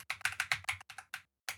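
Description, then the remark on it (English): Rapid, clattery typing on a computer keyboard, about a dozen quick keystrokes in an uneven burst, a brief pause, then one more key press. “Oh my God, my keyboard.”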